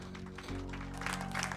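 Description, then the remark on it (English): A church audience claps for the Lord Jesus, a dense crackling wash of many hands, over steady sustained low keyboard chords that swell louder partway through. “Clap for the Lord Jesus.”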